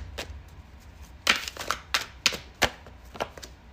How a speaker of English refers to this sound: Maybe I should have pre-shuffled, but maybe you guys enjoy hearing the cards just kind of shuffling.